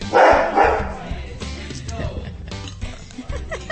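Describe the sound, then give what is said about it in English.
Dogs bark loudly in a quick burst at the start, followed by quieter scuffling, clattering movement and a few softer yips as they run around the place. “Husband and dogs all running around the place.”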